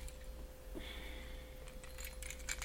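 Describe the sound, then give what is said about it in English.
Keys with a SIM ejector attached jangle quietly as they are handled to fetch the ejector for removing the SIM tray from a Samsung phone, a scatter of small metallic clinks and a brief ringing tone, growing busier toward the end, with no one speaking. “So I've got a SIM ejector on my keys.”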